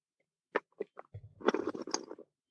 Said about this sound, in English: So take a sip of your wine, and this is going to seem really obnoxious, but you've probably seen wine professionals do this before. This is called trilling, where you slurp your wine.